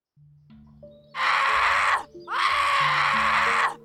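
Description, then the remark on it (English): A person wakes up screaming in pain twice, loud and raw, the second cry longer than the first, over a low droning background tone. “I awoke screaming as I felt someone shaking my shoulder.”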